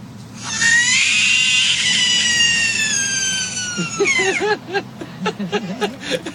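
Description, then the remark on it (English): A frog's distress scream: one long, shrill, wavering cry held for about four seconds, loud, then cutting off as a person starts talking. “And finally, a frog.”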